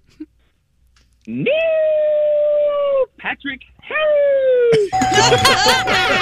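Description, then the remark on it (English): A person howls a last name like a wolf as an answer in a quiz game, in two long, loud, sustained wails with a brief vocal break between them, then a burst of busy, lively noise. “I'll give you $10 for each correct answer, and you must howl the last name”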